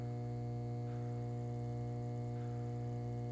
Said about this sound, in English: Do you hear it? It's a curious humming sound that seems to come from the object. We're not more than 20 feet away.